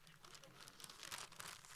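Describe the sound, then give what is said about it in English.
Wrapping paper crinkles and rustles continuously with crisp, irregular crackles and a brief tearing rip, quiet, and no voices. “It's nice wrapping paper.”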